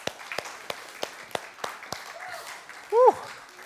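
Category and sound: crowd, audience applause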